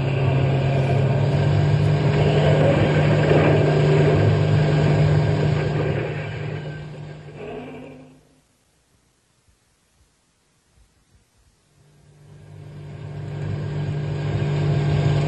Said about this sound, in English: Step on the gas. We'll get out of the park and then we can think about who the next. Go faster.